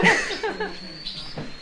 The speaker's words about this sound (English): What's that in there? Is that another squab? That's another wood pigeon.